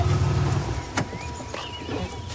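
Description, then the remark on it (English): A car engine rumbles low and steady, then a sharp click gives way to the whirring hum of power windows moving, with no one speaking. “The car's all gassed up, so let's load up the shuttle and head for the puddle.”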